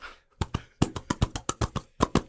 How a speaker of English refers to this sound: No, that was just me clapping along.